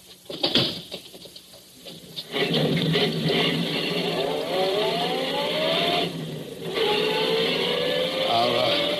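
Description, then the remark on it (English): A few short clunks, then a car engine roars to life and accelerates steadily, its pitch climbing, briefly dropping as it shifts gear, then rising again as it drives off. “Okay, Furman, get in the car. I'll drive, Scott.”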